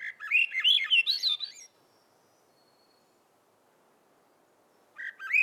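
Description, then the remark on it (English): A Swainson's thrush sings in summer in the North Woods of Acadia: a clear, fluty phrase that spirals upward, then falls silent for a few seconds before beginning another phrase. The song stands alone with no voices. “She's caught songs that are emblematic of summer in the North Woods, like the Swainson's thrush.”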